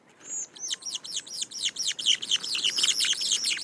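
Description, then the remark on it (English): Two birds of a mated pair sing a rapid duet, a dense run of bright, arching whistled notes that build and overlap into a steady, ringing chorus, clear with no voices. “And most endearingly is they have duets. They perform these duets all year round.”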